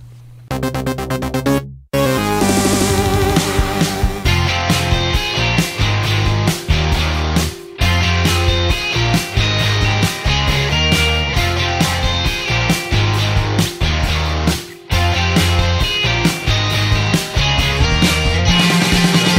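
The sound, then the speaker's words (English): An upbeat instrumental theme plays loud and full, with steady drums, bass and bright synth chords in a driving rhythm, pausing briefly a few times before kicking back in. No one speaks. “Cue my music.”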